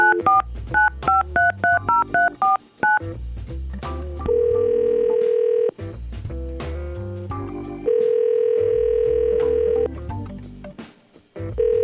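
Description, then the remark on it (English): A rapid series of short touch-tone dialing beeps as a phone call is placed to a man, followed by steady ringback tones repeating at intervals, clear with no one speaking. “We're going to try to call him.”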